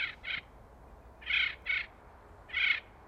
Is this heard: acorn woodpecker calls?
yes